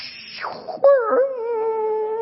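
A phone-based dial-up modem connecting to the internet: a high steady tone gives way to a falling electronic sweep, then an abrupt, loud, buzzy tone holds steady with a slight wobble to the end.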